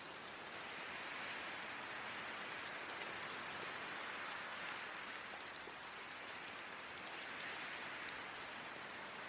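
Steady rain falling without pause, a dense even hiss of drops with faint patters scattered through it. The level stays constant and no voices are heard.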